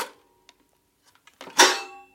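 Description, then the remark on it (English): Metal parts inside a toy piano clank as it is held up, tilted forward and quickly flipped back: a few faint ticks and rattles, then one loud jangling crash whose bright, ringing metallic tones linger and fade. “So he's holding up the piano, tilting it forward, and then quickly flipping it back, and all the metal inside clanks at the same time.”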